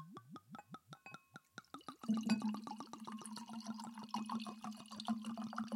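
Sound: wine being poured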